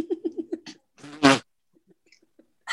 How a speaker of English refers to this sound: That sounds like a fart.